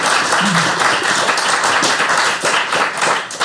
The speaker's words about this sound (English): All right, give a round of applause.